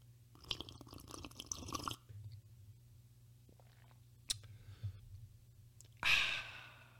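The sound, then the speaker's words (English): Wet sipping and slurping noises as people sip a drink together for a couple of seconds, a small click, then a loud breathy exhale of satisfaction near the end, with no talking. “So we take our sip together, our puff together, the magic dragon, whatever you got going on, and we sip it.”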